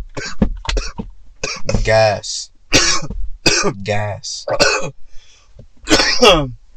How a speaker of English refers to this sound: I'm trying to really stop coughing.